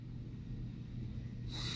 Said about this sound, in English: I'm committed. Close your eyes. All right. Sniff test on the Marmite.